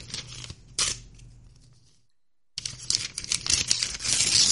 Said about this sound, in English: Well, that package sounds like a piece of paper, but inside of here was a... it looks like a portal gun.